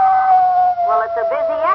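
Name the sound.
wolf howl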